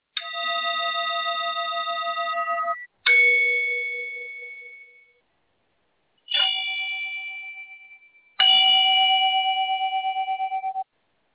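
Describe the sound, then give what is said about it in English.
A Tibetan singing bowl is struck four times, each strike ringing out with a bright, shimmering tone that wavers and lingers for a couple of seconds before the next. No voices are heard. “Now, my voice is going to be quiet for a little while, and when it's time to finish, I'll chime one of my crystal bowl, one of my Tibetan bowls like this.”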